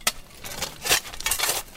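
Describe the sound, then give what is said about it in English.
Shovels scrape and crunch through loose rock, with a sharp metallic clink at the start and then several gritty, rattling bursts as shards are scooped and tossed, fairly quiet with no talking. “They scoop up shards of rock from the old rail track. On the count of three, they toss the rock aside.”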